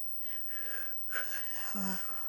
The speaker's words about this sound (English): It's this breathing I did.